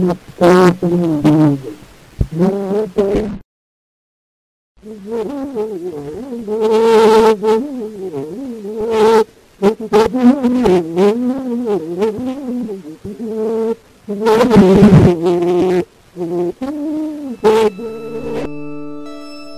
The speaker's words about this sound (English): Here are a few more recordings made during the same period using the same equipment. The first one featuring the opening lines from …, and the second a lively rendition of ….